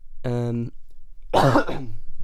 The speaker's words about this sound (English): I shouldn't have done this when I have a little bit of a cough. That's really bad timing.